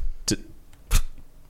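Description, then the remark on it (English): Two short, blurting fart sounds about half a second apart, the second one louder and fuller, with a quiet background between them and no talking. “Escaped myself with my own fart.”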